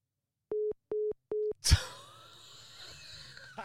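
A phone line's busy tone after the caller has hung up: three short, steady mid-pitched beeps in an even rhythm, followed by a sharp clunk and then a low, noisy hiss.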